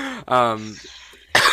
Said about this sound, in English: sorry, I don't know why I keep getting this cough.